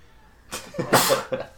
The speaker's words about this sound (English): Oh, you're gonna have to edit that sneeze out.